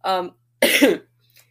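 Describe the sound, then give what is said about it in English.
Two fairly loud coughs from a person: a short throaty, voiced one, then after a brief pause a harsher, breathier cough, followed by near silence. “My lips are all chapped and dry and I'm coughing too.”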